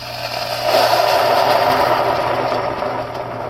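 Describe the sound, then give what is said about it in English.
Water pours steadily into a pot for cooking rice porridge, a continuous rushing splash that swells after a brief start and holds evenly for about three seconds over a faint low hum, with no talking. “Anyway, so I'm gonna add the water now.”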